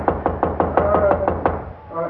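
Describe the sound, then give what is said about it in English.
A run of about eight steady, evenly spaced knocks on a room door in a hallway, fairly loud, followed by a brief quiet moment and a faint murmur of voice. “Please open the door”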